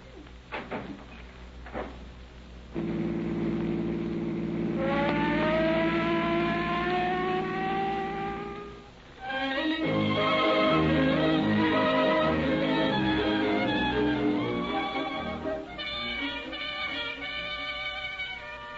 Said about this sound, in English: Will you pull the siren open all the way?